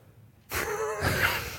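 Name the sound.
surprised gasp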